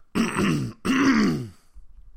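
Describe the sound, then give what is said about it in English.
Two loud, gravelly throat-clearing bursts in quick succession, with a brief pause between them and quiet afterward. “I haven't coughed all day, and then I started doing the show, and my throat dries up.”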